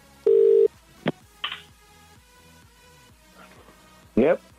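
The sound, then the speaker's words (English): A telephone call being placed to the caller's father: a short steady electronic tone, a couple of sharp clicks, then a brief warbling ring tone near the end, fairly loud against a quiet background. “I'm going to ring”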